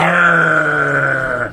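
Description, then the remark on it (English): A person voices a sustained, low rumbling growl, holding it steadily for over a second before it tapers off at the end. “I just like growling when he says growler.”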